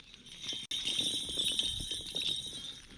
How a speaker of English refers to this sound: What I have here is bells, if you can't tell.